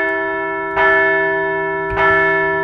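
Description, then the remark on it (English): A large bell rings with two resonant strikes about a second apart, each one clanging loudly and then sustaining a long, shimmering hum of overtones with no voices present. “We're going to ring the bell one more time today.”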